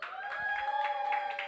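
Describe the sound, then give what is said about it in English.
A crowd claps along in a loose, steady rhythm to vote to keep a producer's beat, the bursts of applause rising and falling over a sustained musical tone. Moderately loud, with no talking. “Hey, yo, crowd, if you would keep that beat, clap it up.”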